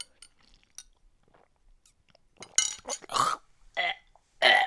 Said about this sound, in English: I'm stirring a drink if anyone's confused. Let's see if you can like hear me sip. This might be like really disgusting. Are you ready? I'm like tonguing the mic basically.